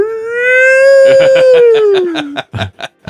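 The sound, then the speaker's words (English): A Sasquatch calling champion lets out a long, rising-then-falling howl in imitation of a Sasquatch call, voiced and tonal, while bursts of laughter break in partway through and continue after it ends. “I like the way your nostrils flare when you do a Sasquatch call.”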